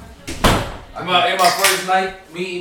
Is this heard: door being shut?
yes